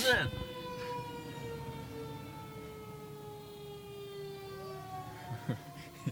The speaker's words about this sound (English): excuse us, everyone, there's some fire trucks going by. Fire trucks going by. Listen.